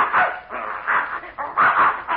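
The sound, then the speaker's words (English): A dog barks several times in quick, uneven succession, each bark fairly loud, with a thin, muffled old-recording tone and no voices. “Well, I'll be darned, there's that mad dog Adolf.”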